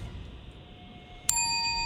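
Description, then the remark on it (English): A single bright quiz bell ding, rung for a correct answer, rings out sharply partway through, its clear metallic tone lingering and ringing on steadily after a quiet stretch of low background hum. “A little bit quicker on the bell there”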